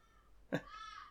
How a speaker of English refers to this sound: Was that a crow?